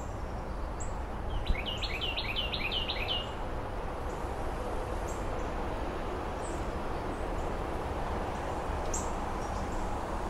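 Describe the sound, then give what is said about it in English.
A resident group of blue jays calls outdoors in a backyard on a September mid-afternoon: a quick run of about eight bright, repeated notes early on, then scattered faint high chirps over a steady background of wind-like hiss. “September 19th, mid-afternoon, the resident Blue Jay gang who helps alert me to any cat or snake or hawk situation in the backyard.”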